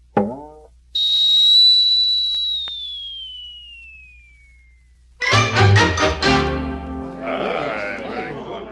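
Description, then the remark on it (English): A whistling arrow shot into the air: a short twang, then a long, shrill whistle that glides slowly downward in pitch and fades over a few seconds, followed by a burst of loud, wavering bleat-like cries. “So I have made whistling arrows.”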